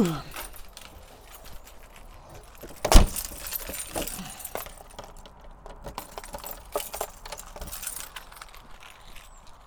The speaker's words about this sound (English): Keys, juice, door is locked. Put the key in the door, open.